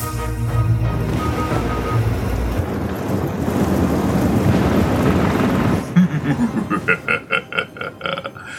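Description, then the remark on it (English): A thunderstorm with steady, hissing rain, gusting wind and low rumbling thunder fills the first six seconds, then fades as a person starts talking. “Manfred, activate the delightfully inclement weather machine.”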